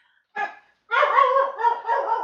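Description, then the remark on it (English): A dog barks: one short sharp bark, a brief pause, then a longer run of loud, harmonic barking and yelping that continues to the end, with no one talking. “tough dog.”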